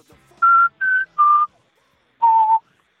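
A whistle-like analog synthesizer melody: three short, bright sustained notes in quick succession, a brief pause, then a longer fourth note gliding slightly downward. Clear and prominent, with no voices.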